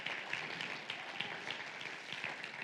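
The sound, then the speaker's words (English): A church audience claps together, a dense, steady patter of many hands that holds evenly throughout without building or fading. It stays fairly soft, and no voices are heard. “That deserves a better clap than that.”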